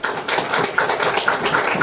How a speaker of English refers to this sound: All of those who are functionally totally blind applaud. All of you with some usable vision applaud.